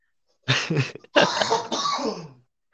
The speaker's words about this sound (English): is having a cough over there. He's packed up a long rip.